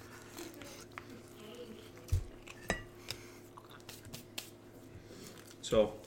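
Playing cards being shuffled and handled, heard as a handful of scattered, crisp snaps and clicks at moderate volume over a low, steady background hum.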